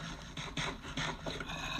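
A video game character eating raw meat, heard as a quick series of crunchy, rasping chomps repeating in a steady rhythm, fairly loud, with no talking.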